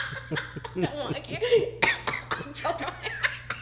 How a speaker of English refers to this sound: Well, as she hacks up a fucking lung over there. I'm okay. Welcome to the Cough Show.